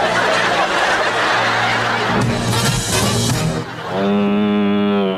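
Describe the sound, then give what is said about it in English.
A single drawn-out moo from a cow wearing a hat, loud, rises at the end after a few seconds of noisy, chuckling commotion. “The cow's wearing a hat this time, though, so she's kind of fancy.”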